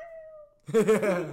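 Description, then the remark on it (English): A person's voice mimics a sad cat meowing: one loud, drawn-out mewl with a wavering pitch, following a brief faint steady hum. “Or then the sad cat's like.”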